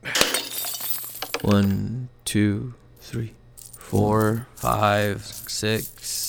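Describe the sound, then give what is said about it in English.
A ceramic piggy bank smashes in a garage, followed by a brief burst of coins clattering and jingling out, then people start talking loudly over the fading clinks. “holding a piggy bank. Sounds heavy? Sounds like a lot of fucking coins, dude.”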